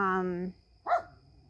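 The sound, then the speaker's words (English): A dog barks twice in the background, a longer harmonic bark followed by a short sharp yap after a brief pause, fairly quiet. “Ooh, there they're barking again.”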